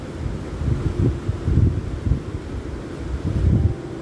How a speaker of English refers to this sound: I invite you to just close your eyes, listen into the waves coming your way and healing you.